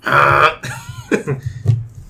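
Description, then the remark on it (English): A person vocally imitates a honk: a loud, nasal blast of about half a second, followed by a few shorter throaty, wavering squawks and grunts. “You didn't do your honk.”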